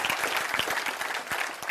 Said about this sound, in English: Praise the Lord. Y'all need to clap your hands. That's right.